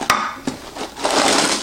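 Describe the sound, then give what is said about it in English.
Two sharp clinks against a dish, then a steady rattling rush as dry bacon and cheddar potato skin snack pieces pour out of their container onto a plate, scattering in a loud crackly cascade with no voices. “Let's open it up, see how this tastes. And let me get a plate so I can pour it out and show you.”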